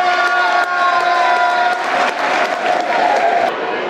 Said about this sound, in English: Billy Mitchell coming in for Shay Ojo, who has looked a class above, in all honesty, tonight, and the rest of his Mill colleagues. 72 minutes. Billy Mitch comes in. Good applause for Ojo, you can hear it.